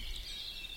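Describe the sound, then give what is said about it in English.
Faint, high birdsong, a thin continuous warbling with no voices, set against a low ambient rumble: a blackbird and a grey warbler singing. “There's a blackbird singing and a grey warbler.”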